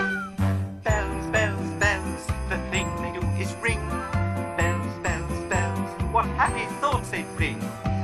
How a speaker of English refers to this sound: Kind and sort, bells to play and bells for sport, chiming what the hour is now. Or they'll lead you to a cow. I was afraid you'd ask what is a cow. Bells, bells, bells, make such a merry sound. Bells, bells, bells, when Christmas comes around.